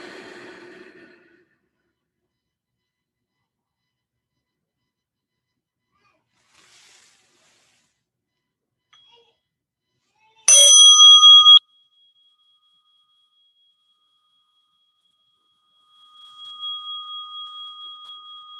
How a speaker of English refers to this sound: And with the bell, you can open your eyes.